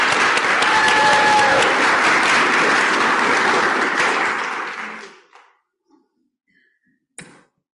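A crowd applauds an acting team steadily, a dense wash of clapping for about five seconds, then fades out with a few scattered claps and a brief sharp sound at the end.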